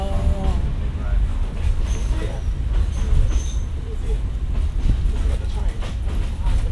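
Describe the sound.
A vintage Chicago streetcar rolls past, its steady low rumble mixed with rattling wheel clatter and occasional metallic squeals, while faint indistinct voices murmur underneath.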